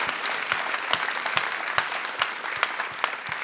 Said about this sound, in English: Yes. Let's clap for that.